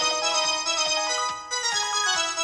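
A mobile phone ringtone plays alone, a bright electronic melody of quick repeating notes that rings out steadily and fairly loud, with no voices.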